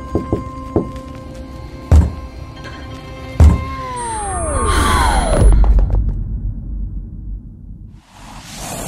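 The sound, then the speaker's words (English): Knuckles rap on the wood floor of an apartment, a few light taps and then two slow, heavy thuds finishing the shave-and-a-haircut rhythm, while a swelling, descending whoosh sweeps over them and fades. “lifts her head up as her fingers form into a hesitant fist and slowly finish the familiar phrase of the knock onto the wood floor of the apartment.”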